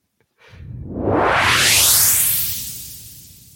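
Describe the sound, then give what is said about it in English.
A single loud swoosh sweeps upward in pitch over a few seconds, rising from a low rumble to a bright airy hiss before fading out, with no voices present. “So we'll just do the swoosh about 3.5 minutes earlier.”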